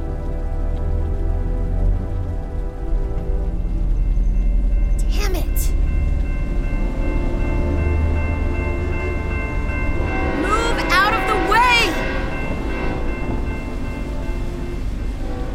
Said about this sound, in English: There was no reason I couldn't have waited for that train.